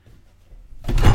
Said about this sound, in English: Why don't you just try the door? Okay.